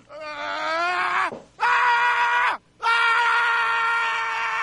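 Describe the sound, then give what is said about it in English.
A loud, sustained vocal scream repeated three times at the end of a comedy sketch, each long cry breaking off with a falling pitch before the next, the last one held longest. Intense, with no talking. “See, I love the ending scream.”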